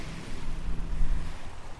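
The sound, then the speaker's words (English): Ocean waves wash onto a beach as a steady, low rushing roar, swelling briefly in the middle, with a windy hiss and no voices. “Hearing the sound of the waves, I think that all made us a bit nostalgic, didn't it?”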